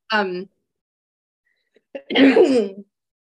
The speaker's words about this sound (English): Bless you.